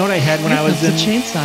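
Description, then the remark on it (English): A loud, buzzing chainsaw rev that rises and falls in pitch for about a second and a half, continuous, with a strongly voice-like quality, as if someone is imitating it. “If you mention those pastries right now, don't say it, otherwise you're getting the chainsaw. Cue the chainsaw.”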